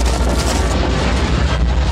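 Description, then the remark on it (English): A heavy, continuous rumbling roar, loud and dense with deep low-end thunder and gritty crackle throughout, as a huge boulder crashes and rolls through a temple passageway at Indy's heels after the trap is sprung. “Indy fled through the passageway, a huge boulder crashing at his heels.”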